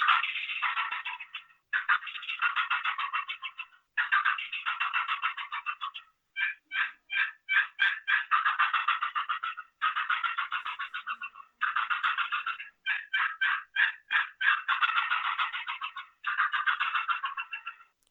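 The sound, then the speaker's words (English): A turkey gobble produced on a shaker call, repeated in a string of loud, rapid rattling bursts, each about a second or two long with brief pauses between, and no talking. “That's a pretty darn good gobble.”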